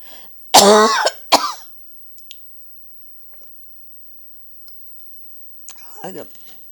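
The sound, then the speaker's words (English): Two sharp coughs in quick succession, followed by a few faint clicks in near silence, then a rougher throat clearing near the end. “I think it is the why I start to coughing.”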